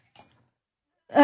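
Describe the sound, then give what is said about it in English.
Rummaging in a drawer while searching for a coin: a faint, brief metallic clink, a second of silence, then a louder burst of rustling and shuffling as things are moved about. “I have the water deep coin too. It's in my drawer. I know it's in here.”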